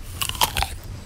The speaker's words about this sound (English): A good train journey needs some snacks. Yum! I'm going to get a drink of water and this crunchy apple.